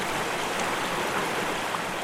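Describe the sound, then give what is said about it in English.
A steady, continuous rush of creek water flowing and babbling over stones, even in volume throughout, with no voices. “Picture yourself standing by a creek or a small river flowing through a forest or a glade of trees.”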